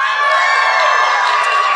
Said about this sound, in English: See, when they're applauding, they mean they hate him. That's right.